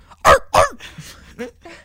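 A dog gives two loud, gruff barks in quick succession near the start, followed by a few quieter vocal sounds and faint murmuring.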